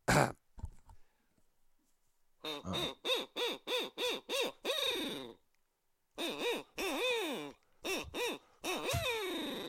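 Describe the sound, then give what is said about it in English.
An owl call sounds a loud series of rhythmic hooting notes in two quick bursts, imitating a barred owl, after a short clatter at the start. “That's an owl. It's an owl call.”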